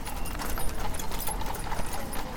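Steady clip-clop of horse hooves on a hard road to London, several horses trotting together pulling horse-drawn vehicles, with a continuous rumble of wheels beneath, moderately loud.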